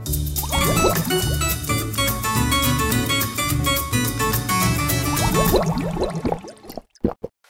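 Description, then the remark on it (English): Water glugs steadily out of a water cooler, with bubbles gurgling up through the jug for about six seconds before the flow cuts off and a few last drips follow. “I'm thirsty. Let's go to the water cooler.”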